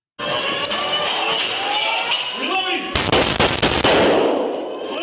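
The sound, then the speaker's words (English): Police bodycam audio from officers inside a building during a shooting: a steady, droning alarm-like tone gives way to a rapid volley of loud gunshots, several sharp cracks fired in quick succession as officers reach the shooter on the second floor, followed by a ringing, echoing wash of noise. “They just followed the sounds of gunfire until they made it to the second floor up on the lobby.”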